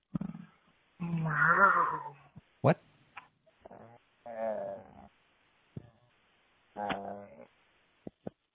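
Several drawn-out cat yowls and growling cries on a caller's voicemail played on Nick the Rat Radio come in separate bursts, separated by sharp clicks and short pauses, with a thin, phone-like quality.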